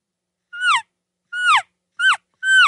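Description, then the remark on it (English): A hunter imitates an elk calf call: four loud, high-pitched chirps, each sliding downward in pitch, spaced about half a second apart with silence between and no talking. “I will calf call, which is more of that high pitched chirp if I'm trying to communicate with the calf.”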